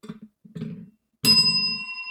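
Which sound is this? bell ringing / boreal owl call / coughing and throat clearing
bell ringing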